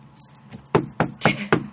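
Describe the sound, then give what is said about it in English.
Knocking on steel for luck: a couple of faint taps, then four sharp, evenly spaced raps with a brief metallic ring after each, fairly loud and with no talking. “Where's wood?”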